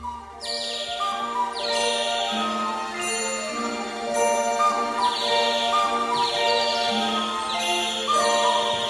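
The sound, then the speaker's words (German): Several trained birds whistle and chirp together when their trainer lures them, in bright, repeated trilling bursts, with steady high tones ringing underneath throughout; fairly loud and continuous, with no talking. “Denn fang ich zu locken an, pfeift jeder, was er kann.”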